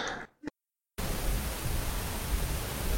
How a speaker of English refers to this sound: I think your battery's dead. Just heard a hiss there.